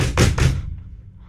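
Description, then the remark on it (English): Two heavy, booming thuds against a stuck door in quick succession, loud, as someone bangs and pushes at it, then a low rumbling fade with no voices. “The door's stuck.”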